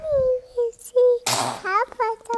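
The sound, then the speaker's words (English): A baby lets out a single sharp, breathy sneeze, fairly loud, surrounded by high-pitched infant coos and squeals before and after. “God bless you”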